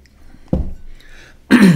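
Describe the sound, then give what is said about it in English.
A quiet clink and soft shuffle, then a sudden, noisy slurp as someone sips hot Moroccan mint tea, with a short throaty sound at the end. No one speaks. “I think I need another sip of my Moroccan mint tea.”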